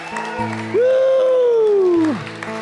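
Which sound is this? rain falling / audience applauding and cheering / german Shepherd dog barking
audience applauding and cheering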